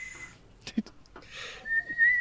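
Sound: human whistling attempt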